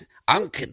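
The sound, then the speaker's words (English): Two quick, harsh coughs in a row from a 79-year-old grandmother smoking a cigarette on a basketball court, fairly loud, the second slightly shorter than the first, with no talking around them. “You're coughing.”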